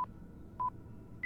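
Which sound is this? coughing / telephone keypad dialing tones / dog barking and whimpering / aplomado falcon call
telephone keypad dialing tones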